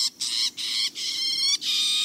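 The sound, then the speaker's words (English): A bird sings in dense Florida scrub habitat, a quick series of four harsh, buzzy phrases, each separated by a brief pause, fairly loud with no voices present. “Eastern towhees and loggerhead shrikes are common in the dense scrub habitat.”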